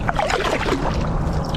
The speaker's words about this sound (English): He's kayaking to school.